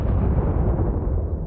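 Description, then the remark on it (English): A loud, deep roar of an artillery shell explosion during a back-and-forth artillery exchange, a heavy low rumble that holds steady for the whole moment without fading, with no voices present. “The explosions were deafening.”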